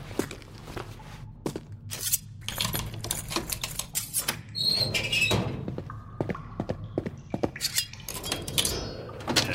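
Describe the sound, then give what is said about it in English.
Irregular metallic clicks and light scraping, with a few faint high-pitched tinks, as a lockpick made from a hairpin with a pocket knife is worked inside a door lock. There is no talking. “I got a handy little pocket knife I can use to make a lockpick with it.”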